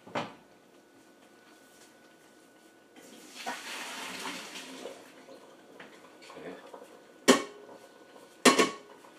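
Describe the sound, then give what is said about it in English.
Cooked pasta is drained from a pot: a rush of water pours steadily for a couple of seconds, framed by metallic clanks of the pot, with two sharp, loud knocks near the end. “Now I gotta drain this pasta.”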